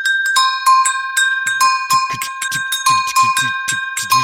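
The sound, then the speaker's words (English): Bright metallic Brazilian bells, called Tingo Bells, struck in a quick, steady rhythmic pattern as the basis of a beat, ringing with sustained overtones, played loud, with low drum-like thumps joining partway through. “Well, here you know these are called Tingo Bells from Brazil, and this is like.”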